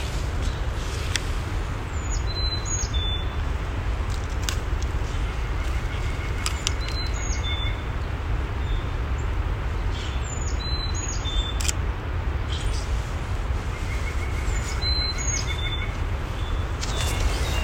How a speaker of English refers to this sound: We're currently walking on the Island Loop Trail, and there are so many birds talking to each other right now in the distance through the trees.